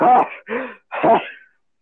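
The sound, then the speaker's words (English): A person voices a dragon coughing instead of breathing fire: three rough, throaty bursts in quick succession, loud, the last one drawn out into a raspy, breathy tail. “Imagine just when he tries to breathe fire, he just like coughs instead.”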